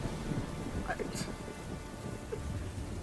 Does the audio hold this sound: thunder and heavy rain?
yes